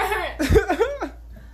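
A burst of harsh, sputtering coughing, several quick choked coughs over about a second, loud and raspy, from someone who has just spat a drink out through their nose.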